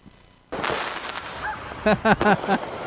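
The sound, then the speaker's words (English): Illegal fireworks at night at a subway stop near Prospect Park in Brooklyn burst with a sudden sharp bang and rolling crackle, followed by a few quick, loud pops mixed with short honk-like tones. A dense, noisy background persists throughout. “You may not feel there's much to celebrate these days, but out in the open, all night, every night, illegal fireworks seem to be everywhere.”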